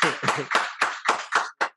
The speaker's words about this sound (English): Shout out to the Dream Team. Hey, yo, clap it up real quick so they know y'all here.